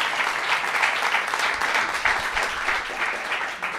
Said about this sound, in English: And I think that this is a great thing to start now. So, please clap. Please clap.